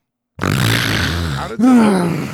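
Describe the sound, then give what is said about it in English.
A voice imitates a man with sleep apnea: a rough, rasping snore-like breath, a split-second stop in breathing, then a loud, strained gasping groan. It is forceful, with no talking around it. “He would make that noise and then that would be like, he'd like stop breathing. And then you would hear him go.”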